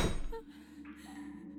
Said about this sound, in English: A moment later, the door closed with a loud thud, and all light vanished.